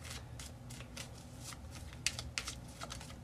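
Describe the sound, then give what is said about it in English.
A deck of cards being shuffled, a quick run of soft papery riffles and flicks with a couple of sharper snaps near the end, fairly quiet over a low background hum. “I got us another deck here.”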